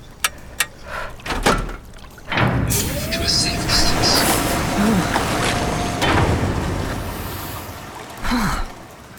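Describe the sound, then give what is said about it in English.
Sharp mechanical clicks of a latch releasing as the yellow-framed release handle is pulled down, then a long, loud pneumatic hiss and rumbling whoosh as a heavy suit locker door opens, lasting several seconds before settling. The locker holds a deep environment mechanized equipment suit (DEMIS). “Pull the locker release handle, framed in yellow, downwards.”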